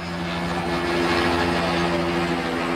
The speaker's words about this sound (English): The video is grim. Almost drowned out by the hovering helicopter, Rodney King writhes on the ground as four cops beat him with batons repeatedly and furiously, and several others stand by.